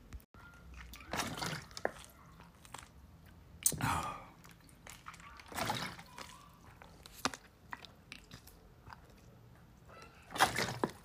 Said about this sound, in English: Right. Let me get some water. Let me drink some water.